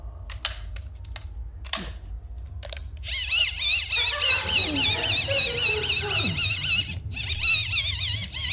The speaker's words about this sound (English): I just want to make it clear to the listeners at home, it's a wind-up torch. I'm not strangling a kitten. It does sound a little bit like I'm...